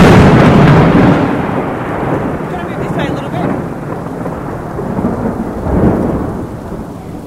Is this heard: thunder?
yes